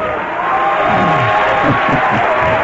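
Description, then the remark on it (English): An audience at a Christian worship service, after prayer for healing, claps steadily and loudly throughout, a dense wash of applause mixed with scattered cheering voices and shouts rising over it. “You may clap again.”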